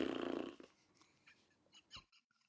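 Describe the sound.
A loud, buzzy, sputtering mouth-made fart imitation, added in while clipping a show, lasts about half a second, then gives way to a few faint clicks and soft breathy bursts.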